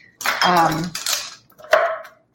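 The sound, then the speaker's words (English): A knife chopping a third of a cup of walnuts on a board, heard as a few sharp, clattering strokes separated by short pauses, with some metallic ringing. “So now I'm going to add a third of a cup of walnuts to this. I've got them measured here and I'm just going to turn this down and I'll just chop them.”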